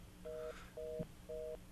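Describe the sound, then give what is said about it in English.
A telephone line beeps after the caller drops: three evenly spaced, steady two-tone beeps, each about a quarter second long, over a low background hum, with no talking. “All right, John's off, but we still have the beep.”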